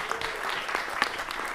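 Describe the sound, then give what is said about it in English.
A crowd claps steadily for performers who have just come from their own theatre show, a dense wash of many hands with scattered sharper claps standing out, moderately loud and sustained throughout. “They've literally just ran here from their show, so please give them a lot of love.”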